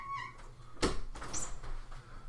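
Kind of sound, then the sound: animal, cat meowing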